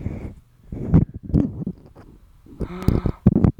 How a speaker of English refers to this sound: Excuse me, I burped.